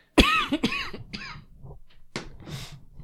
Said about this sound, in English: Everybody done coughing here? Should we all just have like a good coughing fit?